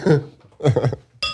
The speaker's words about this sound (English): Ooh, that was a clink. That's the sound of a good glass right there.